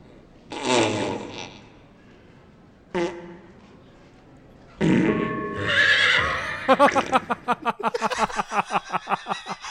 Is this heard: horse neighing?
yes